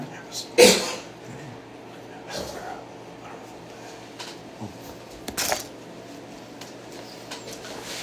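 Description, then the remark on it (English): A sharp, loud cough bursts out near the start, followed several seconds later by a second, slightly softer cough against a quiet, murmuring background. “Just to be clear, that cough is...”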